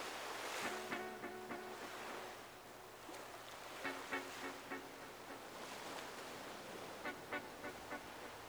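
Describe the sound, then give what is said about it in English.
Steady wash of sea waves surging around a boat pulling away from a dock on a sunny morning, with wind rushing across the water and occasional bright splashes and creaks rising above the continuous roar. “As the boat pulls away from the dock, you feel the cool sea breeze against your skin and the boat's gentle rocking beneath you.”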